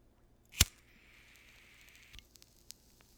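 A sharp click, then a soft, steady sizzle as a bowl of flower is lit in a small pink pipe, lasting about a second and a half and ending in a few faint crackles and ticks. No one speaks.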